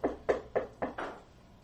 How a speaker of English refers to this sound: Walk around the door. All right. Knock politely upon it.